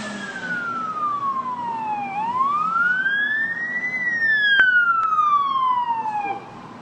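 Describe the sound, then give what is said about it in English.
A police car siren wails in slow, sweeping rises and falls, steady, during a police chase, over a low rumble of road traffic, cutting off near the end. “He ran with the police car.”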